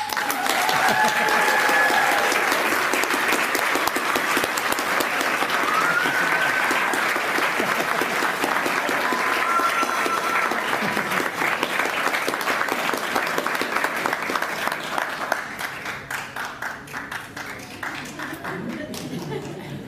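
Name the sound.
audience applause and cheering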